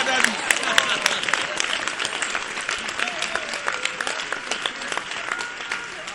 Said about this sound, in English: Yeah. It's good that you are clapping. Next time, clap before I come near you.